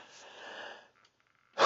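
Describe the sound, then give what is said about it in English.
A raspy, wheezy cough from someone with strep throat drags on for nearly a second, followed by a short lull and then a sudden loud, harsh burst at the very end. “Sorry, guys, I had a cough.”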